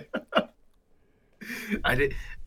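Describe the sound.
A person lets out a drawn-out, breathy yawn lasting about a second, preceded by two brief voiced murmurs and a short quiet pause.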